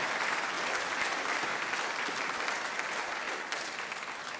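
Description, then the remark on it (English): The audience at Westside Church of Christ gives a group of youth a steady round of applause, dense clapping that stays loud and even throughout without a break, fading only slightly at the end. “Give these youth a round of applause.”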